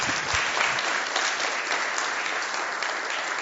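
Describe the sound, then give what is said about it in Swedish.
Sustained applause from an audience for the performers of a short drama, a dense steady patter of many hands clapping at even loudness throughout, with no voices standing out. “Ja, en applåd tycker de är värda.”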